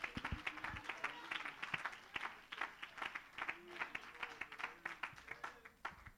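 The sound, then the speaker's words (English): An audience at a worship service claps their hands to give praise to Jesus, in quick, uneven bursts, many sharp claps overlapping into a steady patter of applause with some murmured voices and cheers underneath. “Somebody clap your hands and give Jesus praise.”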